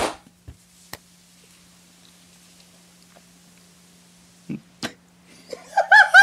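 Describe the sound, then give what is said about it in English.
Sharp, isolated hand claps marking a cut in a recording ring out over near-silence, a couple early on and two more close together later, followed by a burst of laughter at the end. “I'll clap us out.”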